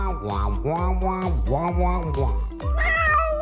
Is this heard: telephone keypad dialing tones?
no